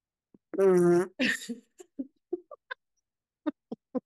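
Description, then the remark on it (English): A mouth-made fart noise: one long, buzzy raspberry followed by a shorter sputtering burst, then a few faint scattered clicks and blips, fairly loud with no talking. “He goes, okay, guess my fart. And it's the same noise every single time.”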